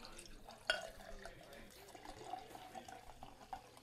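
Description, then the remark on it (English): Healey's cloudy 6% Cornish cider from Penhallow, Cornwall, pours into a pint glass with a steady liquid gush and trickle, a brief clink at the start and faint splashes and drips throughout. “So 6%, but it is marketed as cloudy cider, so I'm expecting it to be a tad rough around the edges. But I'll pour myself a pint now.”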